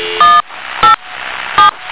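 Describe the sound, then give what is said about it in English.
Four short electronic telephone dialing tones beep in an uneven rhythm over a steady background hiss, each a brief, bright two-pitch keypad tone, clear with no voices. “Let's try Chris Moon. Oh, my phone's back.”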